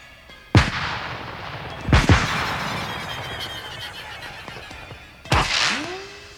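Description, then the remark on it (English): Firework rockets burst in three sharp, booming explosions a second or more apart, each trailing off into a crackling rumble, with a rising whistle after the last. No one speaks. “Those rockets going up within half a second of each other, one from the left speaker, one from the right speaker, all that stuff.”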